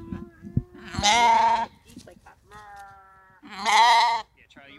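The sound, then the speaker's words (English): A person imitates a sheep with two loud, wavering bleats, about three seconds apart, separated by a softer held vocal tone. “Can you make a sheep noise?”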